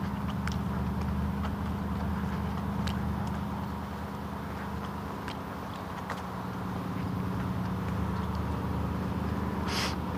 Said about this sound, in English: I know the sound of that car.